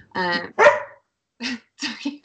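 A dog barks in two quick, loud woofs, then lets out three shorter, softer barks after a brief pause.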